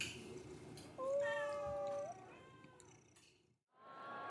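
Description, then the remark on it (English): In a cat cafe, a cat lets out a long, loud meow that rises and then slides downward, falls quiet briefly, and starts another meow, with soft background noise underneath. “So, how did you find this place? What, the cat cafe?”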